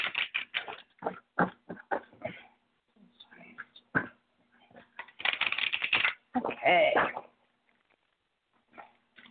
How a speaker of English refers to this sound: All right, let's shuffle up some cards here.